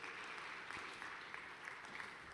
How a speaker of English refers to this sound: It was like the worst golf clap ever. Like, it was not exactly a rounding surprise.